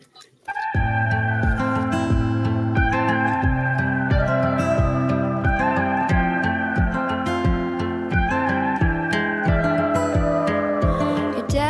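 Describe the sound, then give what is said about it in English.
An instrumental country song intro plays at full volume, with a steady rhythmic bass line under repeating guitar-like melodic phrases, starting after a brief moment of quiet and without any singing. “Now I'm going to play a song.”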